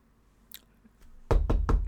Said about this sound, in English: Anyway, but anytime, you know, Picard is in his study and someone knocks on the door, come! I'm Jean-Luc Picard.